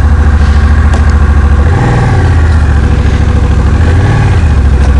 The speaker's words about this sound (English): Now let's start it up. An 1100 engine, so the size of a car engine on a bike.